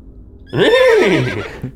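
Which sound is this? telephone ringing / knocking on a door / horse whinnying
horse whinnying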